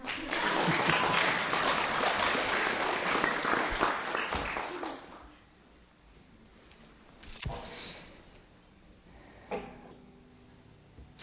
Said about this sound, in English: How about some applause?